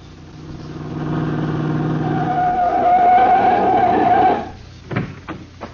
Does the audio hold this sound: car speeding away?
yes